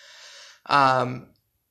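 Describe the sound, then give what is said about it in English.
A single yawn: a long breathy inhale, then a brief voiced exhale that sinks in pitch and fades to silence. No one speaks. “Sorry, I yawned”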